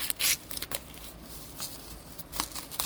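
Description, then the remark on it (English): Crinkly tearing and rustling of sticky paper wrap being peeled off a new phone, in several short bursts with brief pauses between, fairly quiet and with no one talking. “It's wrapped up in like a... it's kind of a paperish kind of thing. And that's the best way I can think to describe it.”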